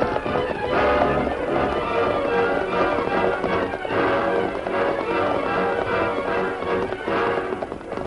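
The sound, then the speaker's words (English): Horse hooves clip-clop steadily and loudly throughout, a dense clatter of galloping hoofbeats with no talking, swelling slightly every few seconds. “let's water our horses and be on our way.”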